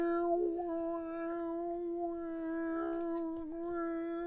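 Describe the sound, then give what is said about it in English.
A person lets out a long, strained yowl like a distressed cat, one sustained wailing tone that wobbles slightly in pitch for about four seconds, fairly loud, with no talking. “Why do you sound like a dying, unmusical cat?”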